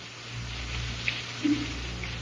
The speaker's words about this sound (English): Father, is it raining where you are? Well, just a little. You better pull your blanket over your head.